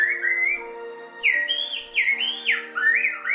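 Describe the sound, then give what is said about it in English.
A woman whistles an imitation of birdsong as an entertainment act: a run of clear, warbling phrases that swoop up and down in pitch, fairly loud and continuous, with no talking. “She does the bird song now.”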